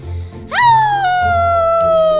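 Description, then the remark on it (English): A voice imitates a werewolf howl: one loud, sustained wail that swoops up sharply, then slowly sinks in pitch as it stretches out, over a low background rumble. “been helping me with my werewolf howl.”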